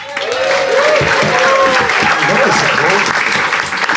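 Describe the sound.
A crowd applauds steadily as a speaker begins a mock case for the prosecution, a dense, loud wash of clapping sustained for several seconds, with faint voices and cheers mixed in beneath the clapping.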